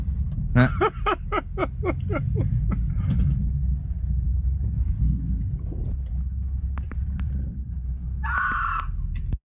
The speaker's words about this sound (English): Here we have a woman who got into a minor car accident with this man who's recording and decides to solve it by taking a ride on the front of his car.